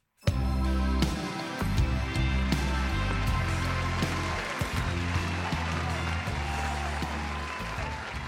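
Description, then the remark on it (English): Sustained audience applause that starts abruptly and holds steady for several seconds, a dense wash of clapping layered over loud music with a deep, stepping bass line, as journalist, broadcaster and podcaster Miranda Sawyer is introduced. “Please, a big round of applause for journalist, broadcaster and podcaster, it's Miranda Sawyer.”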